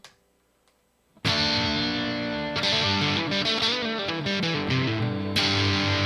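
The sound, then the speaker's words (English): A heavily distorted electric guitar on a full distortion preset bursts in after a second of near silence, playing loud, sustained chords with a thick, saturated buzz and a few quick changes, no voices. “Let's switch to some full distortion just so we can take the podcast home with something I kind of recognize, you know?”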